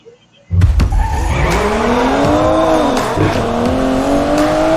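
A DB11 sports car engine roars to life and revs hard, its pitch climbing and falling as the car drives by with tires squealing and skidding throughout, loud and continuous with no talking.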